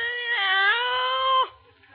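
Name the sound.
cat meowing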